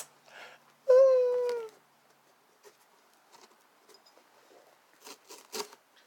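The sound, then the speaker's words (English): Paper being played with crinkles and rustles in a few short, scratchy bursts, mostly toward the end, with scattered soft taps between. Early on, a brief high whining cry sounds. “You really like fucking with that paper, don't you, bud?”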